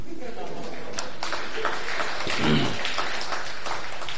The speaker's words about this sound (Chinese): 拍大腿呢我也鼓掌呢。